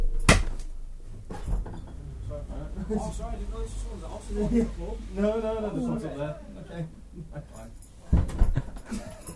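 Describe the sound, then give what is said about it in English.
A male dog whines and whimpers in high, wavering cries as he is called up onto a sofa, with rustling and a couple of sharp thumps and jangles at the start and near the end. “Come here, pupkin. Good boy. Get on the sofa.”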